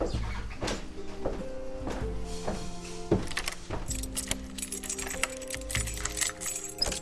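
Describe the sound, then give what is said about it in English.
A bunch of keys is grabbed and jangles, with repeated bright metallic clinks and ringing that grow busier toward the end. No one speaks. “So she grabs some keys and starts leaving you upstairs.”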